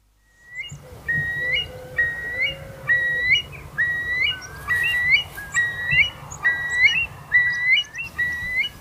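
Lark song made of bright, repeated whistled phrases, rising and falling in a steady rhythm, with rooks squabbling in sycamores at the top of a lane, a soft lower call early on and a faint low rumble beneath; no voices. Recorded April 11th, 2020, with a sprinkling of rain and barely any breeze.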